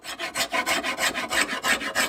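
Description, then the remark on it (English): A hand tool scrapes and rasps across wood in steady, even strokes as a wooden paddle is slowly carved with hand tools in Blacksburg, about six or seven strokes in two seconds, with a dry, hissy texture and no voices. “chips away at a paddle, slowly carving it with hand tools.”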